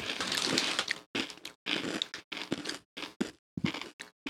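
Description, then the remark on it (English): Loud, brittle crunching of thick, salty, original-flavor Kim's kettle-cooked potato chips being chewed, a rapid series of crackly bursts with short pauses between bites, no talking. “These are crunchy as fuck.”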